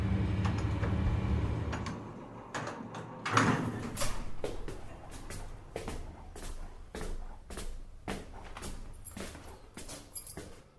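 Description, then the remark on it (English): A low rumble gives way to a man opening the door to his home with a solid clunk, followed by a steady run of sharp clicks ticking along at a regular pace. “Then, when he opened the door, I realised things weren't quite what I expected.”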